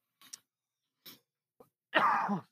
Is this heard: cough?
yes